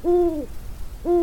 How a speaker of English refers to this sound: It was about 2 o'clock in the morning and there was a full moon and I saw an owl come and land in the tree right up above my tent. And he started making his owl noises. So I got out my little handy recorder and this is what I recorded.